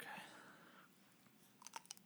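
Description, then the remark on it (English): A soft crunchy bite into a juicy habanero pepper, followed by a short pause and then a few crisp, quick chewing crunches, fairly quiet overall. “bites into this juicy habanero pepper.”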